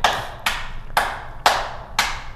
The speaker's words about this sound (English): Where's the clap? Cue the clap. There's a clap.